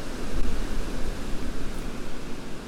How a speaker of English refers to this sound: It's quite blustery, as you can probably hear. I'm just about to walk through Longwood down to the ferry crossing over the River Dart to Dartmouth.